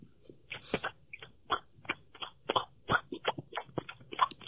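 A rapid, uneven string of short, squelchy arm fart noises, about a dozen or more wet bursts of moderate loudness with no talking over them.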